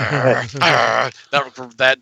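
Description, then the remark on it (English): A person voices dog-like sounds up close: two drawn-out, strained yelping cries followed by three short, rough growly bursts, loud and alone with no actual words spoken. “That yelp turns into a growl.”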